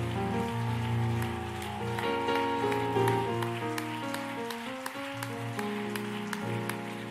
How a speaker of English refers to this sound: We clap our hands to the Lord one more time.